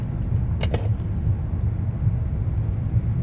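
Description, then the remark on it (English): Steady, deep low-frequency rumble inside a car fills the whole stretch, with a brief sharp crackle near the start and otherwise constant droning road noise, as a can of Liquid Death mountain water is cracked open and drunk in the car. “We're cracking a cold one in the car, drinking and driving for you, moms.”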